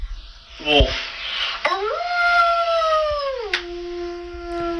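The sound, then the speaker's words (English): A girl mimics a wolf howl: a short yelping start, then a long, steady howl that slides down in pitch and trails off into a lower sustained note. “This girl makes mimicking animal sounds.”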